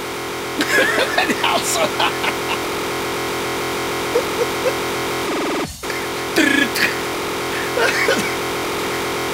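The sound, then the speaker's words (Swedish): Harsh, dense electronic music with screeching high tones and buzzing, modem-like bursts over a droning hum, steady and loud, briefly cutting out in the middle before resuming. “Det låter som ett gammalt iSynth-modem. Det är så fruktansvärt.”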